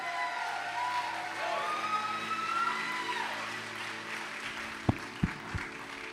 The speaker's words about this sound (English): Al tamaño de tu aplauso será tu milagro. At the level of your applause will be your miracle.